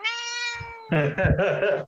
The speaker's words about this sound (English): Oh, damn. Oh, there's a cat. What are you talking about? I don't hear anything.